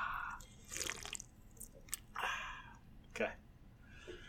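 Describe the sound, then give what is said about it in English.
Someone drinks, with a handful of wet sips and swallows coming in irregular bursts. Each is brief and soft, with moist, slurping mouth noises between them. “You going to drink and go, ah.”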